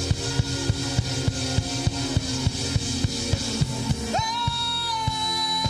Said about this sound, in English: Come on, somebody. Declare God's greatness with a shout.